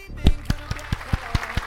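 A short burst of applause: about seven sharp, evenly spaced hand claps in a steady rhythm, sounding like a single person or very few people rather than a full crowd, with no talking.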